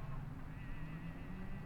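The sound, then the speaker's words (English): A car engine hums low and steady as a vehicle pulls up, a continuous muffled rumble with no voices present. “Is that Gloria's car?”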